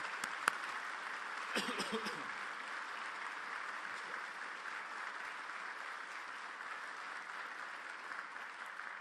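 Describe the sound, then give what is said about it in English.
An audience in Milwaukee applauds steadily for several seconds for individuals and companies including Bader Rutter, BMO, Foxconn and Hammes Company, a dense wash of clapping with a few sharper claps and a brief cheer early on, holding an even level throughout. “Let's give these individuals and companies an enthusiastic Milwaukee round of applause.”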